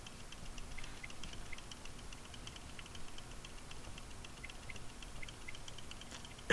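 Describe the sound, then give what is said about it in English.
A quiet, steady ticking from a laptop repeats at a fairly regular pace against a low background hum, faint, with no voices present. “The laptop is making a weird noise.”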